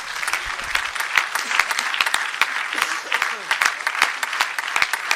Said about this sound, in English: And let's clap our hands to the Lord and give him thanks.